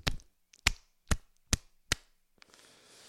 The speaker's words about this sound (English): Gotta shake that out. Just slap myself. This is the first time I've ever slapped myself on air. Gotta slap the days off my face.